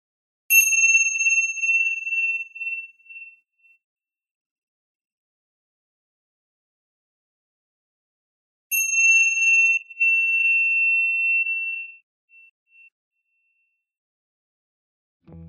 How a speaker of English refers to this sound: And at this point, we do the chimes just to let those inspired actions sink in for a few moments.